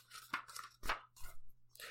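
Papery rustling and crinkling as a book page is turned, a few quick crisp swishes with short pauses between them and no talking.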